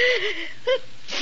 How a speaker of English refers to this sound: Gesundheit.